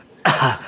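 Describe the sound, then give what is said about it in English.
A single sharp cough bursts out abruptly after near silence, fairly loud, with a raspy throaty tail that fades quickly. “He's coughing me the answers.”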